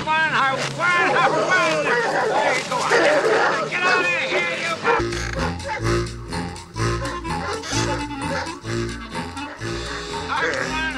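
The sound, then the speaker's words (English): In a movie clip, the Bumpus Hounds, a chaotic pack of the hillbilly neighbors' hound dogs, bark and howl loudly over a busy crowd-like hubbub, then music with a steady rhythmic beat takes over midway. “Our hillbilly neighbors, the Bumpuses, had at least 785 smelly hound dogs.”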